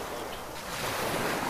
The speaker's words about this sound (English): Cold out here. Lances of rain across the boat.